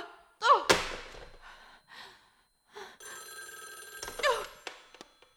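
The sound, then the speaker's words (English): A telephone bell rings in a sustained, buzzing burst of about a second, preceded by a sharp thump and brief gasping vocal sounds, with another voice cutting in as it ends. “Oh, what's the matter with this phone?”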